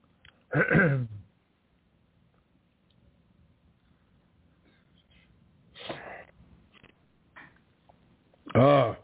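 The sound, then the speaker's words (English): Someone clears their throat after taking a drink, three rough, gravelly bursts spread out with quiet pauses between, the first and last loudest, with faint soft shuffling in the gaps. “Wet my whistle and I clear my throat.”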